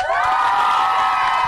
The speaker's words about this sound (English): Penzance Primary School Choir is here. Give yourself a big cheer.